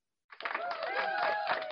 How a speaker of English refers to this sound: Yeah, see, there they go. And then they put up the applause button. Yeah, there you go.